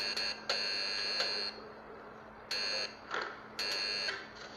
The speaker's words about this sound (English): Morse code.